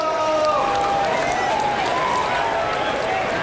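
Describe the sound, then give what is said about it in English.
A large crowd roars and cheers wildly as Achilles and the tortoise begin their race toward the finish line, after a town crier shouts "Ready, set, go!" Loud sustained shouting, whistles and clapping blend into a continuous wall of noise that stays steady throughout. “The crowd goes wild as Achilles and the tortoise begin making their way towards the finish line.”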